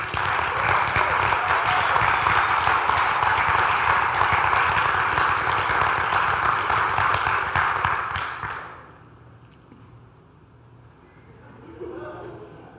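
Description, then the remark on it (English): A large crowd claps steadily and warmly for several seconds for their lead pastor marking 15 years, a dense wash of applause that fades out abruptly, leaving quiet with faint murmuring. “I need to think through why people clap a little more and plan that out ahead.”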